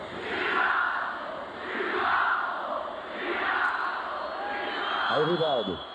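A large football stadium crowd boos and shouts at Rivaldo, including homophobic chants from the stands, in loud, rolling waves that swell about three times, with a few shrill whistles cutting through near the end.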